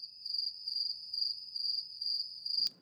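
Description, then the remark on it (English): Crickets chirp steadily in a continuous high-pitched trill with faint pulsing rhythm, fairly quiet and alone, ending with a brief soft click or thump. “We have our crickets here.”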